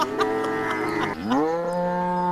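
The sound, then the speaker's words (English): A person imitates a cow with a long, loud, drawn-out moo, alone, its pitch sagging midway before swelling into a steady, sustained low tone. “The cows are like...”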